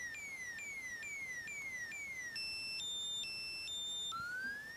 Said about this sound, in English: There you go. You just said the word. I had to play the siren.